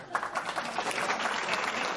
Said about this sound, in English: Please give her a huge round of applause.